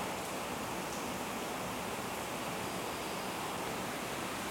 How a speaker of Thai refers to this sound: ฝนกำลังตก